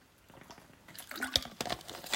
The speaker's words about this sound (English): Can have a sip now.